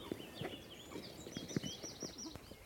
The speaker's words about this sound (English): There. That funny sound, I think, is the sound of the little grebe, which is tiny, tiny, as its name suggests. Is there one out there? Yeah, there is one out there.